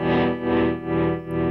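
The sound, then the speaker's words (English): A sustained electric guitar chord played through a tremolo pedal pulses steadily up and down in volume, a clear tremolo effect with a slow, even throb repeating about every half second, heard alone. “That simulates a lot of the older amplifiers back in the day would have tremolo on them.”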